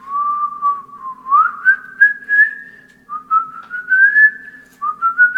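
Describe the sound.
A person whistles in imitation of a bird coming to an egg laid at the bottom of a tree: three sustained, wavering phrases that slide upward in pitch, with a slight warble and brief pauses between them, and no talking.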